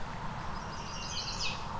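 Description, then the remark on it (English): Thin, high songs of a chestnut-sided warbler and a mourning warbler sound faintly over a steady, rumbling outdoor background by a road in the Currie Tract, Halton region, with a brighter burst of notes near the end. “So we've got chestnut-sided warbler and mourning warbler.”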